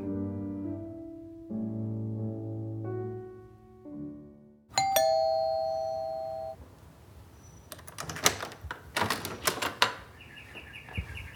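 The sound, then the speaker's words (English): A doorbell at the front door in the radio play The Visit by Hoyt Hilsman chimes a slow sequence of sustained, ringing tones, then gives way to a sharp clatter and a burst of quick clicks and knocks. “Sorry, I didn't hear the door.”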